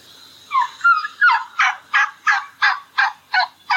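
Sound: turkey gobble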